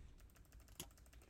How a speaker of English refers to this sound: Shuffling the card.